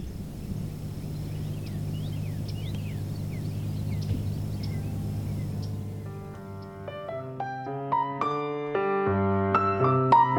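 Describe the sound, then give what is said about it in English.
Scattered spring bird chirps and short calls sound faintly over a steady low hum for several seconds, then give way to clear, stepped musical tones. “I'm going to leave you with a few spring bird sounds.”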